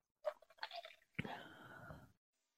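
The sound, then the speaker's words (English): A slurping sip of a spicy cocktail, a few quick wet pulls at the lips, followed by a breathy, voiced sigh of appreciation right at the microphone. “I'm about to take a sip.”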